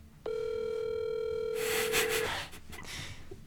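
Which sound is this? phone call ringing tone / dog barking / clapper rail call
phone call ringing tone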